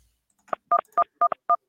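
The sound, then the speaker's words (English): A quick run of short electronic phone-line tones during a call with a bad connection, about seven or eight bright two-pitch beeps in an uneven rhythm, clear and fairly loud with no voices. “It's like beep, beep, beep.”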